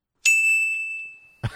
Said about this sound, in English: What's that supposed to be? Just a ding? Just a That's chime? That's a ding, yeah.